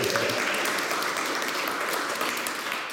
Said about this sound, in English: Big round of applause.